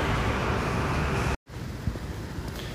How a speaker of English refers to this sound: And unfortunately, we're going across a very loud street.